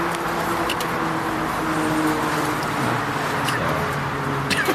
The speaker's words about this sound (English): Having trouble starting the car. All right. We get it. Can't drive it either. It's a stick shift. Is this a stick shift? He's fucking stalling out, yeah. So he's in this old muscle car, red interior,